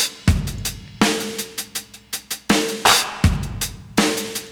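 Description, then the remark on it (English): Sharp, bright sampled hand claps snap in a steady rhythm, played on a keyboard over a looping, filtered synth track with deep bass thumps, the claps loud and crisp on top of the mix, with no talking. “Put the claps with it.”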